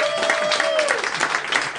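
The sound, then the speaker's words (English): A live show audience claps in a dense, steady burst of applause lasting under two seconds, in answer to a question of who plays a game, with a sustained whistle-like tone that slides downward partway through. “Well, by applause, who plays this game here?”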